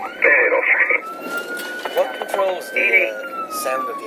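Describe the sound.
A loud emergency vehicle siren, heard from inside the moving vehicle on a day of heavy snow, switches between tones: short warbling bursts alternate with a long, slowly gliding wail, with faint voices underneath.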